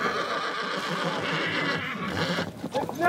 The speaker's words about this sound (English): 50 mile horses! Horses start arriving.